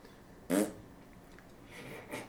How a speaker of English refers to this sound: We'll consider that other one a fart sound.